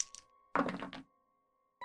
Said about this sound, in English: Went from double ones to double sixes. So that's 12 on the dice plus 2 for steady is 14.